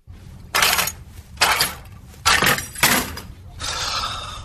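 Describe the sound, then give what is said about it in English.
Car keys jangle in four bright, clattering metallic bursts, each under a second, followed by a steadier, softer shimmering rattle at the end, as a man in a mascot costume tries to grab them with comical hands in a commercial. “And for anybody wondering what that is, it's a guy in a mascot costume trying to grab his car keys to get to the big game, and then realizes with his comical hands he can't”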